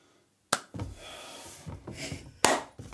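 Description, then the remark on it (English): Two sharp, loud hand claps about two seconds apart, each a crisp snap, made as a sync clap for editing at the start of a recording, with soft rustling and handling noise in between and no talking. “We can't just we got to do a clap or something.”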